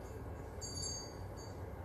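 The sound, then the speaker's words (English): A graveyard bell rings twice, thin and high-pitched, the first ring lingering longer than the second, over a constant low rumbling background hum. “Oh, that's one of the graveyard bells.”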